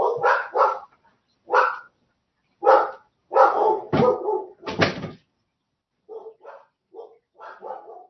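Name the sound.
dogs barking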